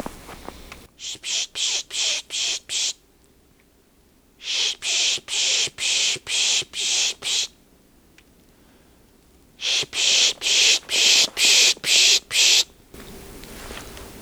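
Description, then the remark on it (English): A person pishing to attract a chickadee on Isthmus Bay Road near Swan Lake Lane and 40 Hills Road: three runs of rapid, rhythmic 'psh-psh' hisses, six or seven bursts each, loud, with short quiet pauses between runs. “So, I'm going to try a spish and bring it over.”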